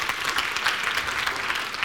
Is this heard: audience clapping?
yes